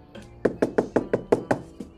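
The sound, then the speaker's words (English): A run of about eight sharp, hollow knocks on a door or table, evenly paced in quick succession, fairly loud, with no voices. “You knock for people to come in.”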